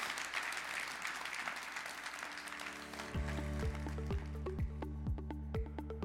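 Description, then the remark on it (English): A large crowd claps enthusiastically to applaud the Lord at the close of a sermon, a dense, steady wash of applause that fades after a few seconds as rhythmic music with a pulsing bass beat comes in. “Come on, if we're going to applaud the Lord, let's really applaud the Lord.”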